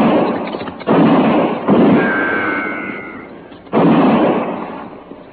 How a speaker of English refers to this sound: That's fine shooting, just fine.